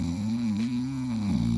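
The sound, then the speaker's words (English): A person imitates snoring with one long, steady, low rumbling drone that wavers slightly in pitch, lasting under two seconds with no other sounds around it. “Oh, I fell asleep.”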